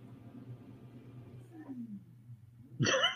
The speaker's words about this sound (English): What was that noise? What is that? I said, sound like a vacuum cleaner. Somebody mowing their lawn.